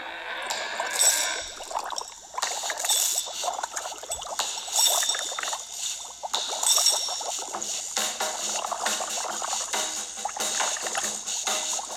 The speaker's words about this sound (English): I forgot there were so many bubbles in this song.